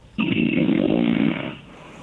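A single long, rasping snore from a man, loud and close with a harsh, band-limited telephone quality, lasting over a second before trailing off into faint line hiss.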